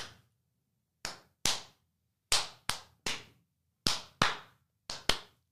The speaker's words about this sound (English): All right. Let's do the claps, everybody.